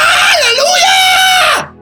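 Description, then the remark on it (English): A man lets out one loud, sustained scream lasting about a second and a half, its pitch wavering before it drops and cuts off abruptly, with no other sounds around it. “You know what I did? I screamed.”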